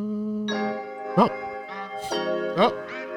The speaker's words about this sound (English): Oh. Okay. Like these little bells.